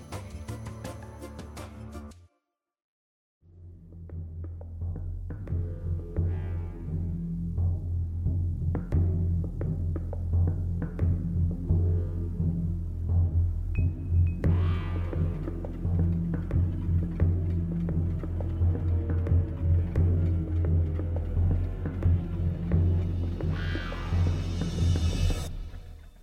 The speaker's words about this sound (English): That last track you heard was called …. I hope it transported you to a large concrete building in the not-so-distant future.